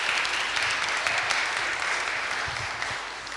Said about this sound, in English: Can we give those three guys a round of applause? I think they did so well.